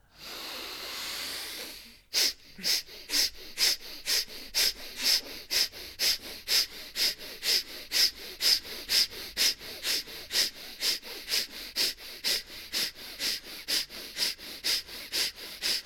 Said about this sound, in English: Big breath in through the mouth. Ready? Oh, that's right. Five. The lion's breath. Lion's breath. Ready? So in. Tongue out. Nostrils.